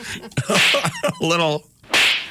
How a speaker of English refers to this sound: slap.